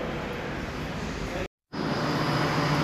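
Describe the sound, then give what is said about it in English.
Ambience at Birmingham New Street railway station before boarding a train to Leeds: a dense, steady wash of low rumble and indistinct crowd murmur, cut to silence for a moment midway before resuming just as loud. “Birmingham New Street, just about to get on the train to Leeds.”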